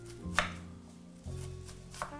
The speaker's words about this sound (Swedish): Och hackar så fint. Och hackar väldigt försiktigt.